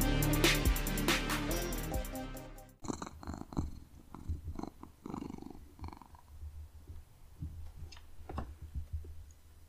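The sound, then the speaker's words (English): A short burst of music cuts off, then a cat purrs in a home studio, a steady rhythmic rumble with soft pulsing breaths continuing to the end. “The fun of working in a home studio is you have cats as guest stars.”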